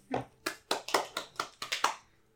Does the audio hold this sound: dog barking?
no